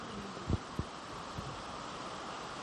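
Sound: heavy rain coming down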